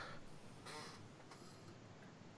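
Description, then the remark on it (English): A single brief, squeaky creak, like a chair shifting, with a nasal honk that resembles a duck's quack. It is faint against quiet background noise, with no talking. “I was like, did someone step on a duck? I didn't even hear it. Maybe it was my chair.”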